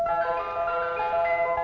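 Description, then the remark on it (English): An ice cream van's chime, from a Tufty public information film, plays a bright, steady electronic melody with sustained tonal notes, fairly loud, with no voices over it, as the van stops by Tufty's house. “This is what happened one day when the ice cream van stopped by Tufty's house.”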